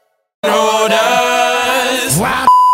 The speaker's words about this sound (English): So every single Friday at this time, we play a clip that is aired this week on the show, and then you try to tell us what's behind the beep.